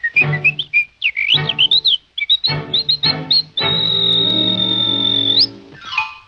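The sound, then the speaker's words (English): A bright, melodic whistle from a song in the Disney animated film Snow White carries a tune in short, bouncy phrases over soft orchestral accompaniment, then holds one long sustained note before sliding down at the end. “This is one of the great songs from Snow White.”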